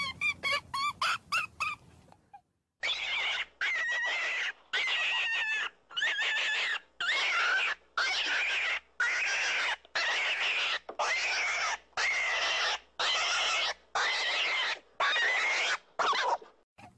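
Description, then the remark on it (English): A rabbit distress call is blown loudly to lure coyotes: a string of about a dozen shrill, wavering squeals in a steady rhythm, each about a second long, after a quick burst of short squeaks. “I'm going to show a little video clip of what takes place here of when you blow in this rabbit call, the stress, and how coyotes come running in.”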